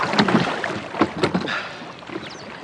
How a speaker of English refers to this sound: Do you mind rowing faster? I want to get in.